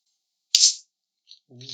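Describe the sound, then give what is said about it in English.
A can of Polar Seltzer, strawberry watermelon flavor, cracks open with one sharp snap, followed by a brief bright hiss that fades within a fraction of a second; a few faint fizzy ticks follow before a voice begins. “Nice little hiss.”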